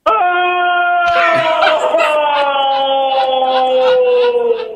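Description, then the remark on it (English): A man lets out one long, loud scream as if in agony, like having a tooth pulled with no Novocaine. It holds steady at first, then turns rough and wavering while the pitch slowly sinks over about five seconds. “All right, we want you to start screaming like you're getting a tooth pulled with no Novocaine.”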